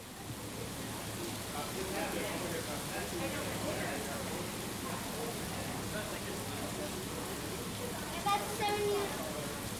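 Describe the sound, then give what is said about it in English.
Steady rain from a summer thunderstorm pours down at CBC headquarters downtown as a dense, even hiss that holds at a constant level throughout, with brief faint chirps and a small bump in loudness near the end. “arrived downtown to CBC headquarters as the summer thunderstorm was just beginning. After a thorough downpour”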